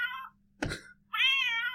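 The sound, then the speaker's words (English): A person mimics a cat, giving two drawn-out, high meows separated by a brief breathy burst. No talking is heard. “Unless it's after you go meow”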